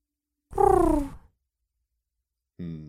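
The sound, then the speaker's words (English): A voice imitates a pigeon's coo: a throaty, falling warble, then silence before a second coo begins and is cut off at the end. Moderately loud. “Fun fact, that's pigeon for fuck you.”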